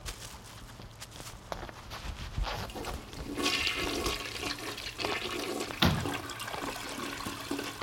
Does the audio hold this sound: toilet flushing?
yes